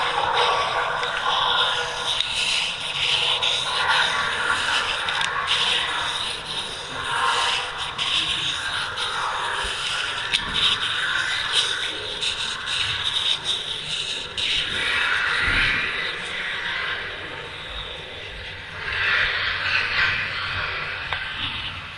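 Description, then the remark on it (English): Dry, papery rustling and rubbing runs continuously for about twenty seconds, a steady hiss-like scratching that swells and eases in uneven waves, with no voices. “Sounds like paper.”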